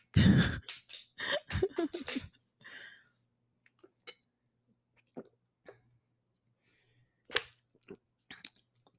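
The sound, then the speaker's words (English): Mouth sounds of someone drinking water from a bottle: a burst of wet sips and gulps at first, then quieter scattered swallows and a breathy exhale or two, no talking. “let me drink some water.”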